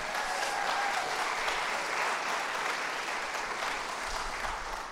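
Steady applause from an audience, a dense wash of clapping hands that holds at a fairly loud, even level for several seconds with no voices standing out.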